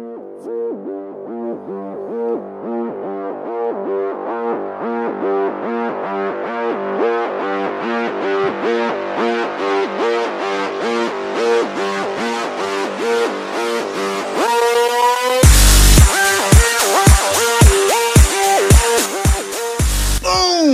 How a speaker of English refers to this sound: It is. That beat is bumping. My heart is thumping.